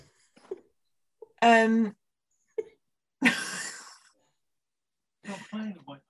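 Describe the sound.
A person fakes snoring: a voiced grunt, then a long, rough, breathy snort, then another throaty burst, separated by short silences.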